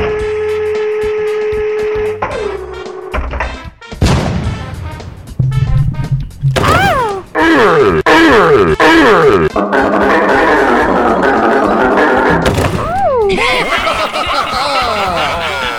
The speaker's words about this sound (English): Yay, I'm Toad, and I'm gonna shoot myself out of a cannon right into the face of a giant wall monster.